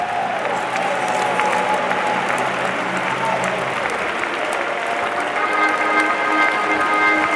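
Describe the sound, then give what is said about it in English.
An audience claps hands steadily to give God praise, a dense, loud wash of applause, with faint tonal music or voices sustained underneath throughout. “Clap your hands and give God the praise.”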